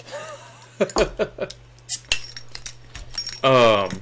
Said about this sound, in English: I threw my keys over there somewhere.